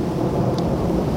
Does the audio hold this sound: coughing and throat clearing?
no